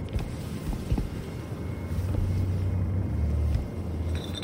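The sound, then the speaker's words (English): An empty glass bottle spins across a wooden table, making a low, continuous rumbling drone over a hissy background. It swells into a steadier hum midway, then eases slightly. “The sound of glass gliding across wood became a droning sound of impending danger.”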